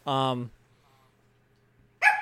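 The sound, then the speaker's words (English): A dog barks twice: a loud, drawn-out bark, a pause of about a second and a half, then a second sharp bark. “Sorry, my dog.”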